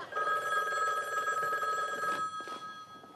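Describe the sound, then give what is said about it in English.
An old-style telephone bell rings loud with a rapid metallic trill, holding one long burst for about two seconds before cutting off into quiet room noise. “And then the phone rings.”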